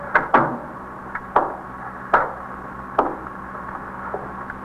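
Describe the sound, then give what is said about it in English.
A door being shut, heard as a handful of sharp wooden clunks and knocks at irregular intervals, moderately loud, with no voices. “Should I close the door? Yes, please.”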